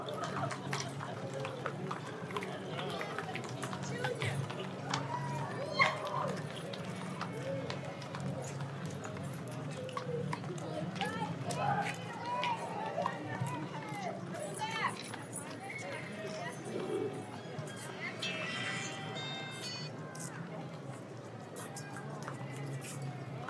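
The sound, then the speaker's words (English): Horse hooves clip-clop steadily on hard ground as a parade of horses and riders passes, the uneven clatter running throughout over a busy background of crowd voices and noise. “All right, here's a short clip of the horse and rider parade.”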